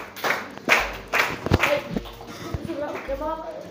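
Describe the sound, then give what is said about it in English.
A scattering of hand claps from a group, sharp irregular bursts over a few seconds, with murmuring voices underneath and a voice rising toward the end. “Clap for him.”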